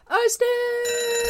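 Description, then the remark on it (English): A brief rising sweep gives way to an alarm bell sound effect, a loud, steady ringing tone held unbroken for about a second, alone. “Arsenic alarm.”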